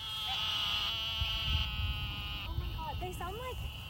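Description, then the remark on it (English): Frogs in the grass give nasal, wavering calls that sound just like bleating sheep, several overlapping in a steady chorus, with shorter quavering cries near the end over constant low background noise. “and later I Googled it, and apparently these are definitely frogs, but they sound like sheep.”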